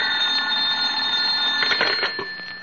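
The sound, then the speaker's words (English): An old-fashioned telephone bell rings continuously for a few seconds in a home, a bright, rattling metallic trill that is fairly loud, with no one speaking. “He was reading the morning paper at home when the phone rang.”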